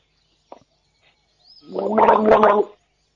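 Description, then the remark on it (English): Someone gargles water for about a second, a loud bubbling, rattling throat sound with a steady low pitch, preceded by a brief faint click and then quiet. “Are you gargling?”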